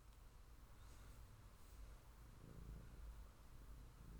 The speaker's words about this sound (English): She's sitting so cute on you, I can't take it. And she's going to be purring in the podcast.